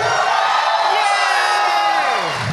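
A live audience at a live My Brother, My Brother and Me show with the McElroy brothers cheers loudly and steadily, a dense wash of whoops and yells with a few high voices rising and falling above the roar, never letting up for the whole stretch.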